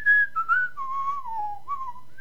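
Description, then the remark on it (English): A person whistles a short tune, a clear steady tone gliding through a few notes that mostly step downward before rising slightly at the end, with no talking. “We should just record ourselves whistling in the background and the whole show have whistling or some weird noise.”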